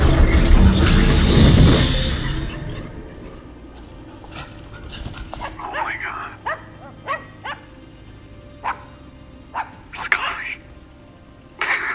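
A dog gives a series of short, sharp barks spaced irregularly, in a room, following a loud rushing burst of noise at the start.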